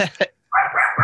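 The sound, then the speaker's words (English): A dog barks at an arriving package delivery in a couple of quick bursts, then a pause, then a sustained yelping or whining bark, fairly loud. “There's a package coming. My dog will not stop.”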